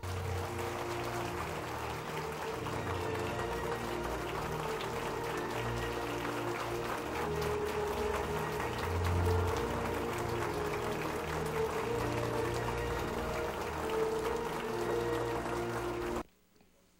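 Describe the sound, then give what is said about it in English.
A large audience gives a long, steady standing ovation for Mr. Israel Arbeiter at a city address in the morning, dense and loud clapping with a low crowd murmur underneath, lasting about sixteen seconds before it cuts off abruptly. “Ladies and gentlemen, would you please join me in giving Mr. Israel Arbeiter, who is here with us this morning, a big round of applause.”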